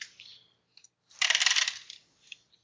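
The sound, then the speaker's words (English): A few light clicks, then a bright rattling clatter of two dice tumbling across a hard table for about a second before settling with a last small tap. No one speaks. “He rolling 2 dice for it.”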